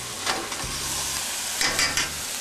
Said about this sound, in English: And also the garlic. The garlic I've mixed up fine. Turn the heat down to medium. Saute a little bit. Just a few seconds actually.